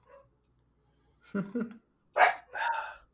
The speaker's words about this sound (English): Interruptions. The dog. Golly, Penny. Yeah, well, interrupting this podcast for 5 years.